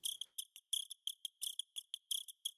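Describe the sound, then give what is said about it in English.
Rapid cricket chirps, with their volume modulated up and down in the Serum software synth, repeat in short rhythmic bursts, their loudness swelling and dropping in a steady pulsing pattern, bright with nothing else underneath. “I actually took the cricket sound, put it into Serum, made the volume go up and down so it would emphasize certain notes of the beat, and this was the result.”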